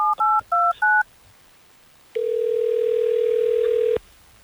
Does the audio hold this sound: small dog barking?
no